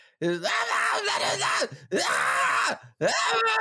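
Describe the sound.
A voice imitates raspy grunge-style screaming in three loud, strained bursts, each a sustained harsh yell with brief pauses between, close to the microphone and with no other sounds.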